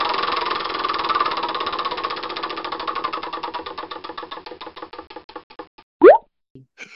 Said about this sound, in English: We might as well spin up the wheel of randomness and see what we come up with.